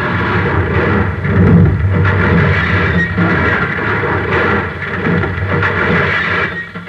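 A car, swerving from an oncoming car with one headlight that is coming down a hill at it, plunges over an edge and crashes, heard as a loud, continuous rumbling roar of crunching, tumbling impacts lasting several seconds, with no voices.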